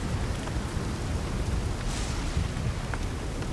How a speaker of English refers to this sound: There just seems to be like a lull in the storm. It's just a pounding rain now.